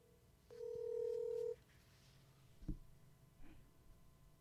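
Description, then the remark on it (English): A single steady electronic telephone tone sounds for about a second, fairly loud, followed by a sharp click and a faint brief blip over quiet background hiss. “It's not my phone. Same service, same number, everything.”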